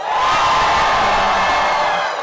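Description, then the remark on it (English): A loud audience cheers and whoops continuously for a couple of seconds to vote for a contestant, a dense wall of shouting voices that swells and then tapers off at the end. “I think that was louder.”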